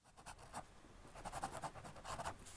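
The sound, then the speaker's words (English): Quiet scratching of a pen moving across paper in short, irregular strokes, with soft gaps between bursts and no voices. “Okay, running out of paper here, so gonna wrap it up.”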